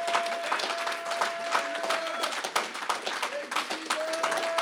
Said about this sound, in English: Come on, can we just give God a hand clap of praise?